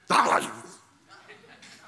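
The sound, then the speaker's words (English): A person imitates the growl of a hurt dog when someone goes to touch it: one sharp, loud snarling burst that trails off into a quieter, rough grumble. “You ever been around a dog that's gotten hurt? You go to touch it, what does it do?”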